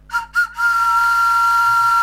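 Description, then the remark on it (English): A whistle is blown loudly: two quick short blasts followed by one long, steady shrill tone that holds to the end, with no voices. “Where's my whistle?”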